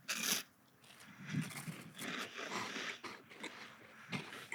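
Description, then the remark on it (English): A sharp crinkle of a wrapper tearing open, followed by a series of crisp, crunchy bites and chewing on a White Heim White Hazelnut wafer bar, with no talking. “All right, so tell us about this treat that you're opening.”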